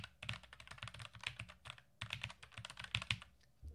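Rapid clacking of the keys of a Logitech MX wireless mechanical keyboard, a steady stream of crisp clicks with brief pauses, played alone with no talking.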